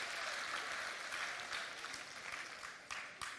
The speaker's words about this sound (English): Oh yeah, round of applause, thank you. Thank you.